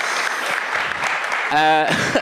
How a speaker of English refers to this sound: We did get some applause. We did get applause. Hurrah!